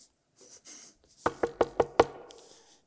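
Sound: knocking on a door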